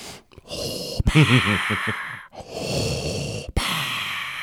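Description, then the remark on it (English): Heavy breathing close into a microphone: several loud, hissy inhales and exhales in a steady rhythm, one with a throaty, voiced sigh, with no talking. “it's picking up your breathing.”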